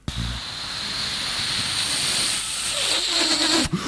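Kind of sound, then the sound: household object, hair dryer blowing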